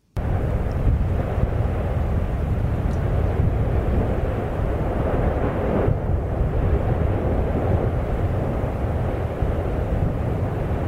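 A loud, unbroken rush of wind buffets a microphone carried by a skier speeding downhill, a dense low roar that stays steady throughout with no voices.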